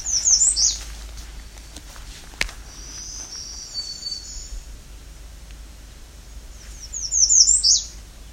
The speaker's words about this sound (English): Ends with that. It's definitely an American redstart. However, the redstart doesn't always do that.